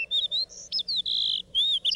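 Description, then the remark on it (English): A fox sparrow sings a quick, bright run of sweet whistled notes and slurred phrases, clear with no voices, continuing steadily for about two seconds. “Fox sparrow.”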